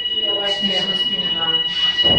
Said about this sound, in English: When, is this a smoke alarm or something? No, it's a smoke alarm downstairs.